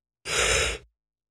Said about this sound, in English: Oh, I'm sorry. No. I keep yawning, dude.